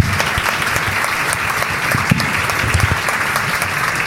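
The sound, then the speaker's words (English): Steady, loud applause from an audience, a dense wash of many hands clapping at once that holds at an even level for the whole stretch, with no voices standing out. “I will also ask you to join me in a round of applause for AB and Bob.”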